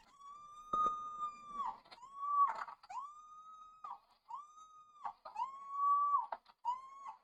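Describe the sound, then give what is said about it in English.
Dogs in a video bark and bay in long, drawn-out howling calls that repeat one after another, with a few sharp barks mixed in, steady, with no talking. “Wait, what? What are the dogs?”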